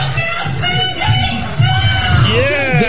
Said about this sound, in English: Screaming about the district not rescinding the mask mandate in their schools. When a parent spoke up in support of the district's mask requirement, do not change your game plan in the ninth inning and acquiesce. She was drowned out by screams.